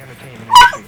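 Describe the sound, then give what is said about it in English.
A dog named Layla lets out a single short, high yelping bark with a whiny edge, fairly loud. “Are you putting our dog on camera?”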